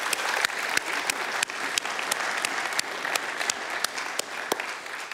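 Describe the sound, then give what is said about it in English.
Steady applause from an audience fills the room, a dense patter of many hands clapping with a few sharper claps standing out, sustained at a moderate level without any talking. “A round of applause for Susan DeBell, please.”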